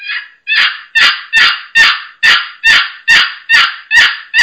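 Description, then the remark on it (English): A box call makes a series of about ten loud, raspy hen turkey yelps, low and slow, in a steady, evenly spaced rhythm, with no talking. “Okay, and then, like you're saying, low and slow, and that raspy hen on this box, it just, listen to this.”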